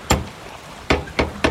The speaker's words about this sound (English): I grab the big gargoyle-shaped door knocker and...